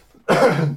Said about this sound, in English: I'm realising as well, you were so swift to bring in the jingle that I didn't have a preparatory cough. So I'm just going to do it now.